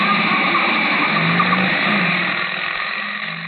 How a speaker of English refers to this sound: Motorcycle, jet-propelled by a black-haired lunatic in a leather jacket with a blonde beauty riding behind him. The handlebar missed goring me by inches.